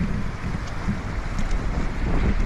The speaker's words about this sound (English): that was a motorbike there.